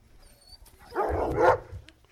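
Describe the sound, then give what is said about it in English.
An artificially enlarged terrier hunting rats in crop fields lets out a short, rough burst of barking lasting under a second, with faint outdoor background before and after and no one speaking. “Following tape, field observation of terriers.”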